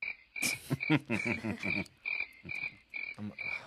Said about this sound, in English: All right, that's enough crickets.